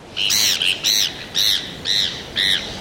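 Heermann's gull calls: a series of five harsh, nasal squawks at a steady rhythm, loud, with faint background noise and no voices.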